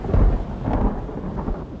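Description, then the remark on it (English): A deep roll of thunder from a lightning storm rumbles through a steady wash of falling rain, loud for a couple of seconds, with no voices. “Lightning is basically a type of really, really big electric shock.”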